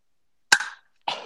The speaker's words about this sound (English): All right. Well, give us a clap so we know when to start.